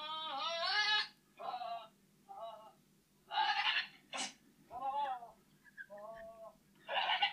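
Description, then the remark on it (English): A goat screams over and over in loud, human-like wailing cries, with about eight quavering calls separated by short pauses and a low steady hum underneath. “It's a goat.”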